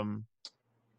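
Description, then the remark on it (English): A single sharp tap on a computer keyboard, brief, following a short fading tone, then a quiet low hum. “Sorry, like, I hit my keyboard and Siri popped up on my computer and it threw me off.”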